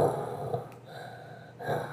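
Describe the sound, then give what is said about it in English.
A voice imitates the heavy, mechanical breathing apparatus of a masked film villain dressed all in black: a long raspy, hissing breath, a brief lull, then another rasping breath swelling up, with no talking. “And then he has what they call a breathing apparatus.”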